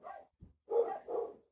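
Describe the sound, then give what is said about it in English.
A small brown dog named Harry barks in short, high-pitched bursts, three or four yaps in quick succession with a brief gap, heard alone at moderate volume. “That's the high-pitched bark you can hear in the background.”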